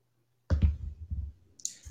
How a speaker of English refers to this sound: So do you want to go ahead and roll a dice for me?